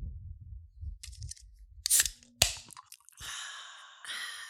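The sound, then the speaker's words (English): A can of Vizzy cracks open with a sharp click and a brief metallic clatter, then a steady fizzing hiss of carbonation spreads out and continues to the end, following some low rumbling handling noise. “Pop it open”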